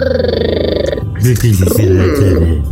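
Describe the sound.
A voice makes a throaty, rattling purr for about a second, made by rolling an R at the back of the mouth, a steady rapid flutter like a cat, then breaks off into normal talking.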